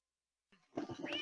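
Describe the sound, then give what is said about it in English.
A male cat in distress lets out a drawn-out, rising meow that sounds strained and urgent, starting after a brief silence and continuing loudly to the end with no talking. “Listen, the cat. That darn cat. He's in distress.”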